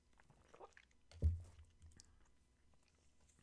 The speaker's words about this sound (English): I'm having a sip of my coffee. Excuse me.